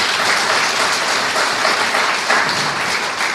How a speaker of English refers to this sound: And that applause is for him, his higher power, and the Fellowship of Alcoholics Anonymous.